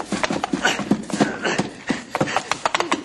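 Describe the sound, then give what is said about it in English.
A horse charges at a man with rapid, pounding hoofbeats, loud, the hard clattering strikes tumbling over one another in a fast, uneven galloping rhythm. “Look out for that horse, boss! He's coming for you!”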